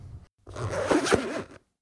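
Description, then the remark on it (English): The zipper of an overstuffed suitcase is pulled closed in one long rasping stroke lasting about a second, preceded by a brief shuffle and followed by silence. “Zipper down.”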